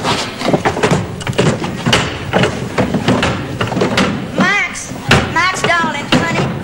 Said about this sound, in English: Drawers, honey, the drawers. I got my drawers. I'm looking for my socks.